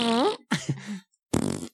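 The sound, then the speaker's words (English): A voice makes three loud raspberry-like fart imitations in quick succession, the last one buzzing and fluttering, with short silent gaps between them. “You could just make fart noises.”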